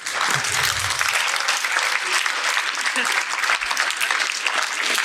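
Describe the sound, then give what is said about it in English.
Steady audience applause fills the whole stretch, a dense wash of many hands clapping at even loudness, sustained without pause or other voices standing out. “It is stunning to me that massacre and genocide gets applauded in this building.”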